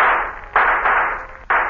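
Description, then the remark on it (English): A shooting gallery gun fires three or four sharp, loud cracks at uneven intervals, each a hissy burst that rings on briefly before the next shot, knocking the hat off a dummy target, with no voices. “Let's have another gun, will you? Here you are, sir. 2 bit quid. How do you hold this thing?”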